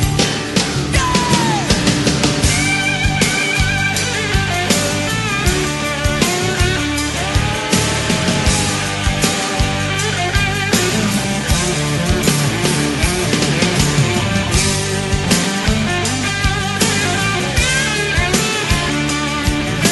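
A loud, continuous guitar solo rides over a full band with drums, its sustained, bending lead notes sliding in pitch through dense studio-recorded rock. No one speaks.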